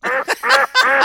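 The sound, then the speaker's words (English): A voice imitates a chicken, making three or four loud, nasal clucking squawks in quick succession, clear with no other sound around them. “Next in the room, cluck cluck. Any clucking and bucking.”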